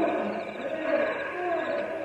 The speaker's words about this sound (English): What's that? Cougar. He come close to camp. Shoot it! Not shoot what cannot see. Not foolish. I build up fire. He stay away.